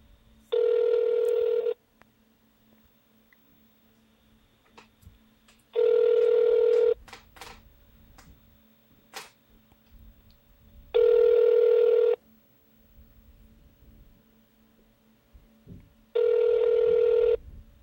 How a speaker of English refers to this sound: Phone's ringing, dude.